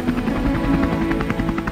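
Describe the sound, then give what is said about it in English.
A National Guard helicopter drones steadily at a distance as it approaches a store to land on its roof, its rotor producing a rhythmic, pulsing thump over a low engine rumble, with no one speaking. “And off in the distance, you could hear a helicopter.”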